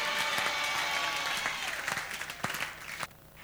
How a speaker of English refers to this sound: No, those who are clapping, may God remember you and may God bless you.